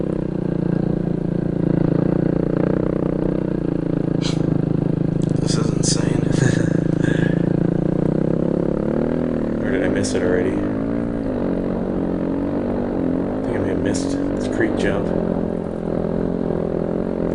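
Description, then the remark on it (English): A snow bike engine drones loudly throughout as it is ridden across a steep, slanted side hill, its pitch rising and falling as it revs, with a man talking over the steady mechanical roar. “Yeah, that's why you need the snow bike.”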